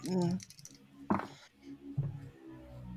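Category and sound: household object, dice being rolled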